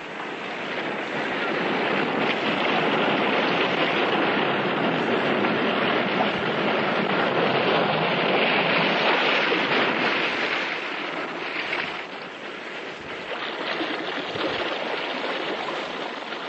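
restless sea waves surging

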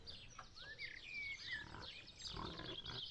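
pig squealing

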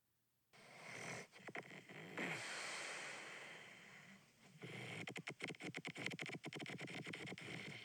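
small dog snoring

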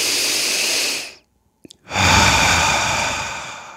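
deep inhale through nose

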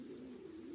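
stomach growling

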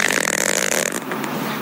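fart

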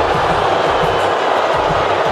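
crowd booing

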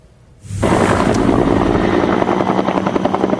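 helicopter flying over wildfire

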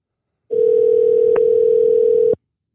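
telephone dial tone

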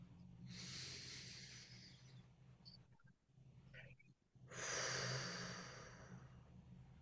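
deep breath in nose

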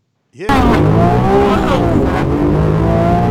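car engine revving loudly

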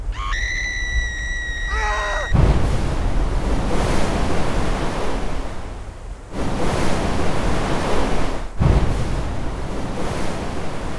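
wall of water crashing

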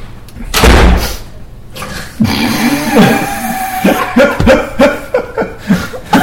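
door being closed

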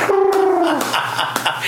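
doves cooing

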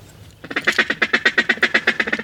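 duck calling

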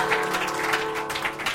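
audience applause

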